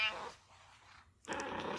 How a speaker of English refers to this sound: This week my guest is, unfortunately, my cat, Smokey Jones. Hey, stop. I'm actually surprised I haven't had the need to introduce you to him before this. Interrupting conference calls is sort of his thing. Knock it off.